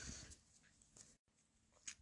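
Faint, irregular gnawing and clicking of a dog chewing on a bone, with soft scattered crunches and a brief silent gap partway through, no voices present.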